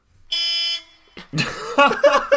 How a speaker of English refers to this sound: I mean, you can't knock it. That is a bus horn. It's a well-sustained note.